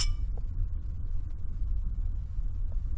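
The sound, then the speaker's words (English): A single sharp clink of glasses of absinthe touching in a toast rings out at the very start, then fades into a low, steady rumble with no voices. “What shall we drink to now, Thurber?”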